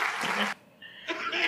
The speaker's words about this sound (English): Hold for applause.